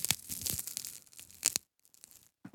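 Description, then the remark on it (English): Dry, brittle crunching and crackling as a medium-sized, semi-dense, mossy green Sherbet cannabis bud is broken apart under pressure. A dense burst of crisp snaps lasts for over a second, then a pause and a few faint crackles come before a final short crunch. “Man, that sounds crunchy. Oh, it's a beautiful crunchy nug.”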